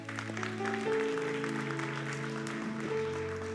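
An audience claps steadily and continuously after a sermon, a dense wash of applause while sustained keyboard or organ chords hold underneath throughout.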